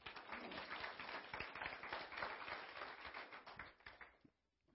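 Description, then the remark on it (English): An audience gives the Lord a hand clap, clapping their hands together in a dense, steady burst of many overlapping claps, fairly loud throughout, before tapering off and stopping just before the end. “Well, give the Lord a hand clap.”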